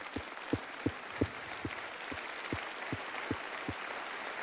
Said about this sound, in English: Can we give Brother Yun just a round of applause and a thank you, Jesus?